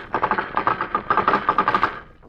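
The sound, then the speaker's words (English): A rapid, rhythmic run of hollow clopping knocks, bunched in galloping groups of three, made as a sound effect imitating horses' hoofs. It stays steady and fairly loud, then trails off, with no talking. “Horses' hoofs.”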